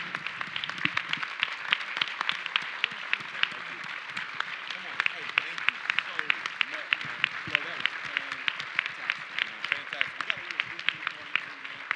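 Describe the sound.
Sustained audience applause, a dense crackle of many hands clapping steadily for about twelve seconds, with faint voices and cheers mixed underneath.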